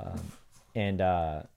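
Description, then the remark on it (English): A single short sneeze, a voiced build-up snapping into a breathy burst, fairly loud, followed immediately by another person speaking briefly. “Bless you.”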